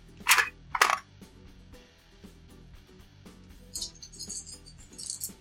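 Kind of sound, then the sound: dice being rolled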